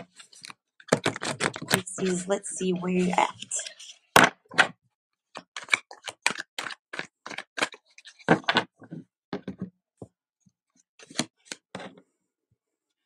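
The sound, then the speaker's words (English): Shuffling of a deck of tarot cards for a Pisces reading for the month of June: a dense, fluttering riffle of a few seconds, then a string of crisp taps and snaps as the cards are squared up, with a brief spoken line in between. “Give one more good shuffle.”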